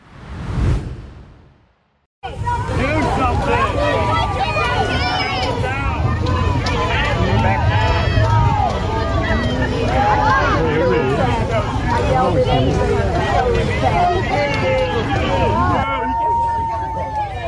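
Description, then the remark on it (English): A large crowd booing and shouting at Biden during his visit to Texas, a loud, steady roar of many voices for about fourteen seconds, preceded by a brief whoosh and a moment of silence. “And that audio you hear right there is Biden being booed while visiting Texas this week.”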